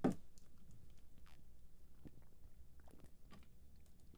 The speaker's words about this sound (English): Nonetheless, let me take a sip real quick. Stay hydrated, by the way. Get your H2O.